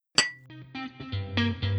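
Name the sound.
glasses clinking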